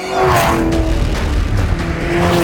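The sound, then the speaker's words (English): A car engine roars loud at high speed during a chase, a steady droning whine with slight surges in pitch, running continuously for a few seconds with no voices. “It's okay, well, I kind of hear it's going fast because the engine clearly tells me it is.”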